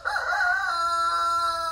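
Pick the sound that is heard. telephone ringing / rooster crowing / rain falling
rooster crowing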